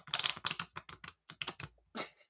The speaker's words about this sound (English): So I'm going to give them a quick shuffle and see if I can get the shuffling sounds on mic, because who doesn't love a little bit of card shuffling ASMR?